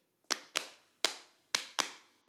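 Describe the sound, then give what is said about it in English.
Five sharp hand claps used as a transition sound, in a loose pair-pair-single rhythm, each crisp and bright with a short decay, alone with no talking. “How are we feeling about that clapping sound? Are you sick of it yet?”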